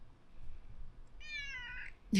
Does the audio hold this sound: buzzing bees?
no